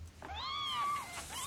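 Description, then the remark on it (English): A kitten gives one long, high-pitched meow that rises and then falls, fairly loud, with a brief start of another mew right after. No one speaks. “Could I please have a basket of victory kittens?”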